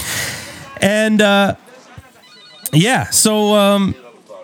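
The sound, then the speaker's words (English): A telephone rings without being picked up: a quick pair of buzzy rings, a short pause, then a warbling ring and one longer tone, loud with no one talking. “My guy, I'm trying to get him on the show, but he just won't answer the phone.”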